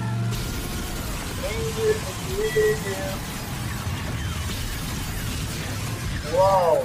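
A monster truck crushes a limousine: a loud, continuous heavy engine rumble with crunching, shattering metal and glass, plus a few short, high squealing tones rising near the end.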